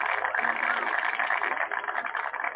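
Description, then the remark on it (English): A truck engine idles steadily as a man gets out of the truck, a continuous, fairly loud droning rumble with a slightly rough texture that holds without change for a few seconds. “He's getting out of his truck now.”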